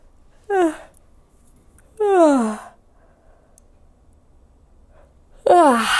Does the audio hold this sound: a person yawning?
yes